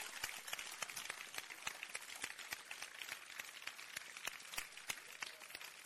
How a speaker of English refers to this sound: Oh, another round of applause.